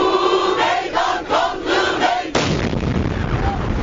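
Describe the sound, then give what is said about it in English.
A protest crowd calling for peace chants and shouts in rhythmic bursts beside Ankara train station in Turkey, then a sudden loud explosion cuts in, one of two explosions, followed by a roaring wash of noise and screams. “Two explosions ripped through the crowd beside Ankara train station, at least one believed to be a suicide bomber.”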